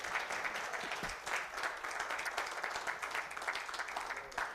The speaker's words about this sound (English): Can you give her a hand clap for the things that she does?